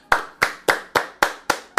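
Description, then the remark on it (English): Steady hand clapping: seven sharp, loud claps at an even, brisk rhythm, like one person giving a short round of applause, with no talking over it. “Why don't we give a round of applause for non-murderous police?”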